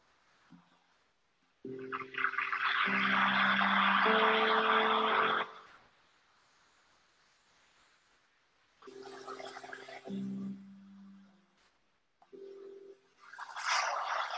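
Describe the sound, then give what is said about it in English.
Ocean waves wash in and recede in broad hissing surges, one long swell followed by two shorter ones, with a low steady hum running beneath. No one speaks. “Listen to the rhythm of waves.”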